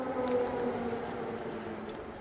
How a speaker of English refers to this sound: And as if to underscore just how active it still is, just as Biden and Zelensky were stepping out of St. Michael's Cathedral, air raid sirens rang out.